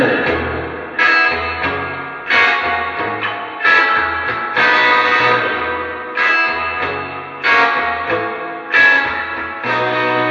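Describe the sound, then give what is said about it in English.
An electric guitar plays strummed chords at a steady pace through a Deluxe Reverb amp with the reverb rolled up. Each attack blooms into a wide, washy reverb tail that keeps ringing and overlapping. Loud, with no talking. “Rolling the reverb up.”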